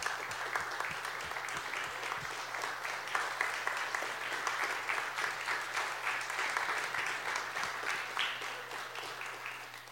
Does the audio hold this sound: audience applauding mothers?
yes